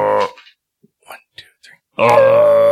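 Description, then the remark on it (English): A person imitates an elk call: a brief voiced grunt, a few soft breathy noises, then a loud, sustained, strained wail held until the end. “Does that sound like an elk, guys?”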